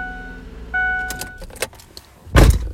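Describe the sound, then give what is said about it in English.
A car alarm sounds a steady electronic tone for about a second, set off when the key fob's alarm button was pressed by accident with the keys in a pocket, followed by a few clicks and clunks and a loud thud near the end. “My keys were in my pocket, and what I did was I believe I pressed the button on them that rings off the alarm,”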